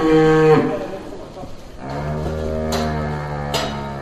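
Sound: cows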